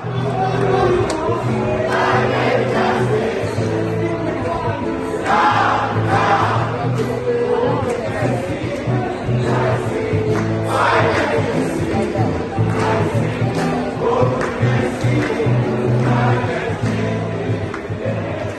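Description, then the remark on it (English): A loud crowd of young voices chants and cheers together at the Children and Youth Pavilion in the Blue Zone at COP27, in a steady, rhythmic roar that holds for the whole stretch, with shouted phrases rising above the dense, continuous noise. “And after long days of meetings and discussions and passionate engagement, they let off their steam at the Children and Youth Pavilion in the Blue Zone at COP27.”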